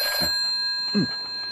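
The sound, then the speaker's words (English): A telephone rings with a steady, shrill electronic tone that holds through the whole moment, fairly faint, with a brief low murmur partway through; Poirot rushes to answer it, and the caller is Monsieur Charles Weiss. “Poirot positively rushed to the phone.”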